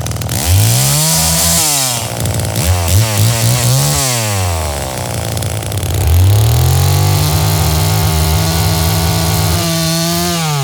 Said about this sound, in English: So I call him and I'm like, so we're doing Texas Chainsaw. Do you want to record some chainsaws?